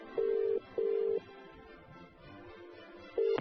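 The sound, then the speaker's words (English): The number of King Edward VII Hospital being dialed on a telephone: short, loud electronic tone bursts with brief gaps, and a fainter steady tone underneath between them. The line sounds clear, with no one speaking. “On the phone tonight. So okay. The number's going in.”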